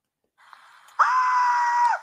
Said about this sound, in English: A toddler girl was fatally struck by a car Thursday morning while crossing a Staten Island street with her mom, whose blood curdling screams were captured in a heart-wrenching video.